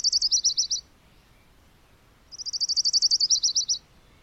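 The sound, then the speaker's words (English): Colima warbler song: two bright, rapid trilled phrases, a short burst followed by a longer one after a brief pause, clear with no voices. “But the only place in the U.S. to find Kalima warbler is in Big Bend National Park.”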